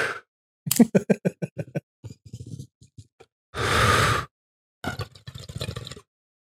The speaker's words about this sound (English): The mechanics of a bong hit. Nice. If you swallow that bong hit properly, there's no need to cough.